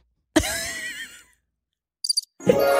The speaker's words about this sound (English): And I accidentally hit the cricket sound effect as well.